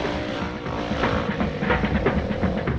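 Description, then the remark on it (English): A motorcycle engine revs loudly, its throaty rumble rising in repeated bursts over a few seconds with no one speaking. “A motorcycle has two wheels and handlebars to steer it. It's fun to drive, and when you drive, everyone can hear it.”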